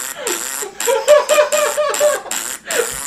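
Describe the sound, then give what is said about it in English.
A person makes raspberry fart noises with their mouth: a string of about five buzzy, sputtering bursts with a wavering mid pitch, fairly loud, with no talking. “That's not even a recording of a real fart. No, it's me making the sound.”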